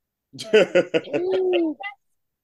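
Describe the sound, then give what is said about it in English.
Birds cooing outside, fairly loud: three quick throaty pulses followed by a longer drawn-out coo and a brief final note, then silence. “Oh man, the birds flying down south for the winter. They're like attacking the birds out here, don't they?”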